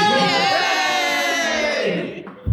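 A small group of people lets out a loud, sustained cheer together, voices overlapping in a drawn-out whoop for about two seconds before trailing off into a brief thump.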